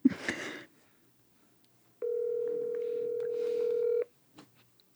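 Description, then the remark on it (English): A single long ringback tone from an outgoing phone call to a friend on speakerphone, held up to a microphone, steady and electronic for about two seconds, preceded by a brief shuffling noise and followed by a faint click. “You have to do it on speakerphone though.”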